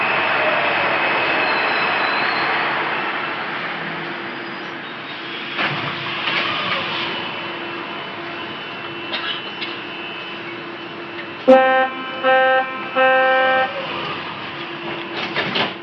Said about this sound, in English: What you've just heard is the sound of the Warsaw subway, called Metro, one of the longest-run construction projects in Warsaw.